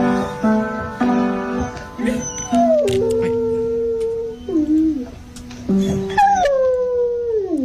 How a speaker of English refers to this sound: It is unbelievable. Dog up, hind legs, up on the piano, playing away and singing its face off. It's beautiful.